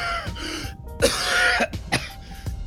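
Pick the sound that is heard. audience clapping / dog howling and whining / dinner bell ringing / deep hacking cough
deep hacking cough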